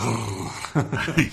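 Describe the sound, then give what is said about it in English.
A human voice imitates a playful, flirty growl: a low, rough rumble broken into a few short bursts, lasting just over a second. “A flirty growl. So he's doing like that.”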